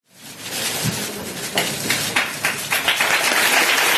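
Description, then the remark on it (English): A crowd in a courtroom applauds as Nassar walks out after his sentencing, steady dense clapping that swells slightly and carries on throughout, with scattered sharper claps standing out from the wash. “Applause followed Nassar as he walked out of the courtroom.”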